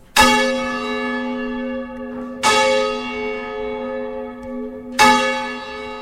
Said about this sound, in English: I'm going to holler down, then one of the lads going to pull the number six bell, which is that one there